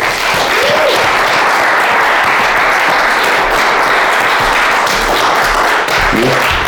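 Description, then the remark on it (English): An audience applauds steadily and loudly for several seconds to welcome a guest on a snowy day, a dense, continuous wash of many hands clapping at once, with only a faint hint of voices beneath it. “let's welcome John Benjamin Hickey”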